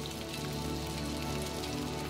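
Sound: heavy monsoon rain falling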